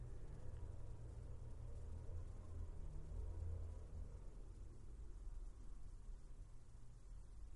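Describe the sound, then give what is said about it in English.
A leaf blower drones steadily outside, a continuous rough engine roar with heavy low rumble and a broad hiss, holding at an even level throughout with no voices. “It's probably a leaf blower.”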